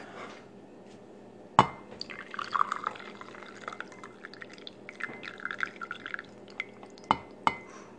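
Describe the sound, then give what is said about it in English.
A coffee refill is poured into a cup held to the mic: trickling and splashing, with a few sharp clinks of ceramic at the start and near the end; no one speaks. “Love the sound of coffee being poured.”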